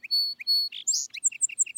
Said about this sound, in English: The song sparrow, which every child knows, comes first. At least, his voice is first heard.